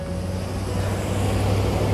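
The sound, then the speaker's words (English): A single car goes by, its broad tire-and-road rush swelling gradually over a steady low engine hum, moderately loud, with no one speaking. “First car.”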